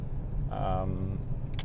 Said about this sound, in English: It's just about me driving in my car and talking.